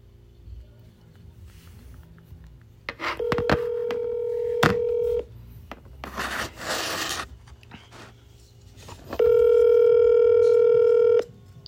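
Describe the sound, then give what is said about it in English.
Sharp phone key clicks and beeps as someone dials a call to friends, then two long steady ringing tones separated by a burst of rustling handling noise, fairly loud with no one speaking. “Now, I'm about to call both of them. Both of them motherfuckers on the phone and shit.”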